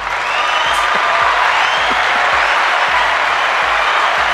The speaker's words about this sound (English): I hit the applause a little too early.